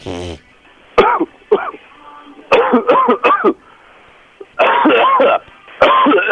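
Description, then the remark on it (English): A harsh coughing fit: repeated bursts of hacking coughs in quick clusters, separated by brief pauses for breath, loud and strained. “Go into a coughing fit where it's almost like something's wrong with you.”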